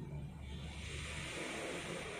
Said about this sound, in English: The waves sound hitting the shores.